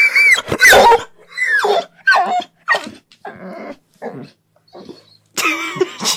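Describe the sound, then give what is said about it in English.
A female dog yawns and vocalizes as she says goodbye, in a string of short, whiny, squeaky bursts with rising and falling pitch, ending in a longer, breathier, louder sound. No one speaks. “That's her saying bye and yawning.”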